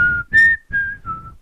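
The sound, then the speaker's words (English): A person whistles a short melodic phrase, several sustained notes shifting in pitch with brief breaths between them, clear with a low rumble underneath. “Have to whistle.”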